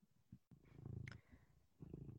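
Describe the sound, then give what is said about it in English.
A male cat purrs in a low, steady rumble that swells, dips briefly, then resumes, with a soft click near the start and no talking. “He won't say. He just purred.”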